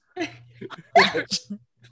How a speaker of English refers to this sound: Wow, my back just popped when I sneezed. Oh, blessings.